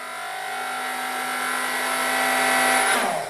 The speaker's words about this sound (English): Yep, it's the blender. Why would we want to control the blender with the volume knob?